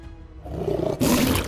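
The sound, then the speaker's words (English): A surrounded lion roars out toward those around it, starting as a low rumbling growl and swelling into a loud, raspy full-throated bellow that fills the short clip, forceful with no talking. “The creature now is staring at all of you, realizing that it's surrounded, and just like, you know, making sounds towards all of you, roaring out.”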